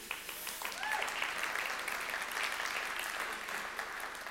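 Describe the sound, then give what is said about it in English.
A church audience breaks into applause, many hands clapping in a dense, steady wash that holds at an even moderate level for the full few seconds, with a brief faint vocal sound near the start. “There was a little clap coming from someone there. You can applaud.”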